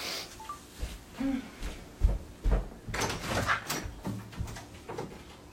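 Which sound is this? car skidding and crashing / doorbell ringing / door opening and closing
door opening and closing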